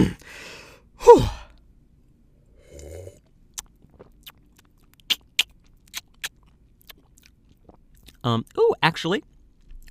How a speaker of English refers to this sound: That was a good third sip right there.